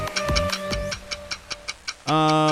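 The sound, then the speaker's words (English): A five-minute countdown clock, started for a community Q&A, ticks in a steady, evenly spaced rhythm, about eight crisp ticks, before a loud sustained tone abruptly sounds at the end. No voices are heard. “5 minutes are on the clock. And I am going to begin the clock right now.”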